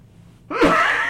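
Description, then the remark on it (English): After a moment of near silence, a single loud, explosive cough bursts out in a studio, harsh and breathy, trailing into a rough exhale with no talking around it. “I need a cough button or two.”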